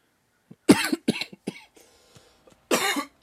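A series of harsh coughs in irregular bursts, three or four in quick succession, then a pause with faint rustling before one more loud cough. No speech.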